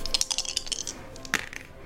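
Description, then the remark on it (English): Two dice clatter across a hard tabletop in a quick burst of rattling clicks, then a final sharp knock as they settle. Fairly crisp, with no talking. “I only have two dice.”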